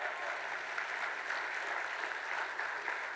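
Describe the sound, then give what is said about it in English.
A crowd applauds a newlywed couple married 8 days, many hands clapping in a dense, continuous wash of sound that stays at an even, moderate loudness for a few seconds with no voices standing out. “Hey, yeah, clap.”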